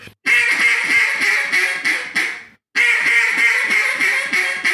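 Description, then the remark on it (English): Two long, raspy strings of quacks blown on a duck call as a lazy duck call, pitched in between a fine and a coarse call, a steady run of evenly spaced notes, a brief gap, then another run; loud and reedy, with no talking. “So basically a lazy duck is going to be in between, in my opinion, it's going to be in between a fine and a coarse.”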